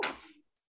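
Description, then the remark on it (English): A single short sneeze, a sharp breathy burst that fades out within half a second, with no talking around it. “No, that was a sneeze.”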